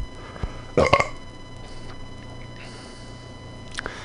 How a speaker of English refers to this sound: Excuse me for a second, I'm going to have to burp.